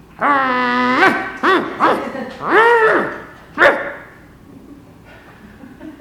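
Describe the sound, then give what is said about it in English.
A dog barks, starting with a long drawn-out yowl, then several short, sharp barks in an uneven burst, with a quieter pause at the end. “What was he barking at?”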